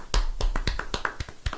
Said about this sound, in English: I'll give you some polite golf applause for that.